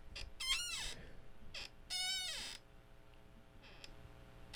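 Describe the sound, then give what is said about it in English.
A chair squeaks and creaks several times, sharp tonal whines sliding up and down in irregular bursts, with one longer drawn-out squeal in the middle and no talking. “Squeakiest chair on the entire planet.”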